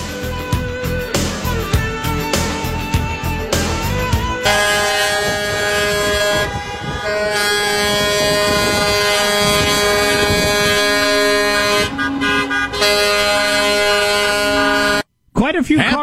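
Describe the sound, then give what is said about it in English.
A loud, continuous chorus of overlapping car and truck horns blaring and honking together at a street protest outside the Capitol in Harrisburg, Pennsylvania, with sustained air-horn tones and crowd noise underneath, briefly cutting out near the end. “Quite a few cars and trucks and people in Harrisburg, Pennsylvania, doing one of those open things up protests. Outside the Capitol, it appears.”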